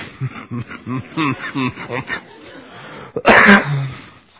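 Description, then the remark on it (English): A man speaks for a couple of seconds, pauses, then lets out one loud cough, a sharp harsh burst that trails off quickly. “Almost made it through 2 pages of notes without coughing.”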